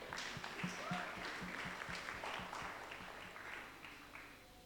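An audience at a wedding applauds steadily for several seconds, a dense, sustained wash of many hands clapping with a faint rhythmic thump underneath, loud throughout.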